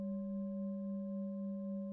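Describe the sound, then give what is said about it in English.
A meditation bell rings out in a steady, sustained tone, its mid-low hum holding evenly with a gentle wavering pulse throughout, no voices alongside it. “And the sound of the bell is in the present moment as well.”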